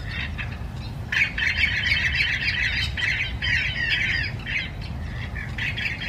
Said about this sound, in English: I'm in Miami, Florida, and this morning we're listening to Orange-winged Parrots. Let's give it a listen.